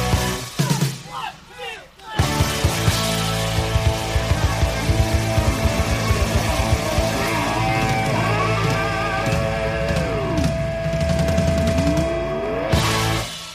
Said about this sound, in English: we got to play the most killer rock and roll ending on the whole album.